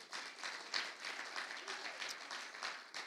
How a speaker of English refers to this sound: That's right. You can clap. They're a wonderful pastoral team.